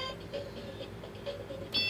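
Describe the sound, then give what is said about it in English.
The battery-operated electronic timer of a Yahtzee Turbo dice game ticks steadily over a faint mechanical hum, with regular soft beeps, then a brighter tone bursts in at the very end as the player beats the clock. No one speaks. “You beat the clock!”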